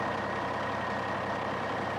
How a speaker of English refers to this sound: are in a box truck heading to the city to acquire some Tab Cola.